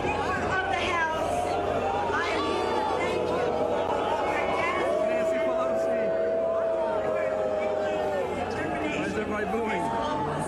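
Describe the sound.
A large outdoor crowd at the Global Citizen Concert in New York boos Speaker Pelosi loudly and continuously, long drawn-out jeering voices rising over a dense roar of shouting and chatter that fills the whole stretch.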